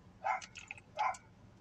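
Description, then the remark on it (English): A little white dog across the street barks, two sharp high-pitched yaps with a couple of softer yips between them, faint, with no talking. “I hate little dogs, man.”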